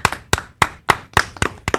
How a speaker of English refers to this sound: Salute. Thanks for the golf clap, guys.